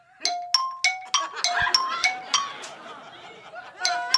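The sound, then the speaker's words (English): A phone's default ringtone, the one set on its owner's own phone, plays a quick, bright melody of plinking, xylophone-like notes in a repeating rhythmic pattern, each note ringing briefly with a metallic shimmer before the next one strikes. “we're going to hear what you're rocking with in your real life when someone calls you on the phone”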